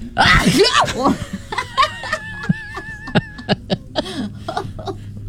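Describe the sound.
A single loud, sudden sneeze bursts out at the start, followed by snickering laughter and short bits of voices.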